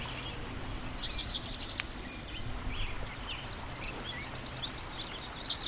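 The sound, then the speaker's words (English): A spotted towhee sings nearby in foothill shrublands below the fog-shrouded Flatirons near Skunk Canyon, giving short buzzy trills and a few scattered chirps over a steady low rumble of outdoor background noise. “The nearby sound is a spotted towhee.”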